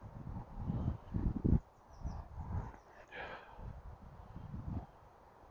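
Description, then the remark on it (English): Faint bird chirps in a field surface a few times over low, rumbling outdoor noise like wind buffeting a microphone, with a brief brighter twitter near the middle. “There's birds. I don't know what they are. In the field.”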